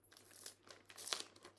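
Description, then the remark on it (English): Wrapping paper crinkles and rustles as a gift is unwrapped, in two short bursts of crisp crackling, the second a little louder, with no talking. “I was going to say, this is the wrapping paper.”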